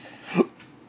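A single short hiccup, a sudden voiced gulp that jumps out abruptly and cuts off, followed by a fainter breathy trace and quiet background hiss.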